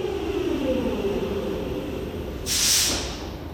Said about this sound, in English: I made it to my platform right as the train pulled up.